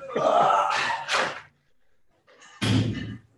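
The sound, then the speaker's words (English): A door creaks and rattles as it swings, then pauses briefly before slamming shut with one loud, low thud. “I'm going to pop my door shut really quick.”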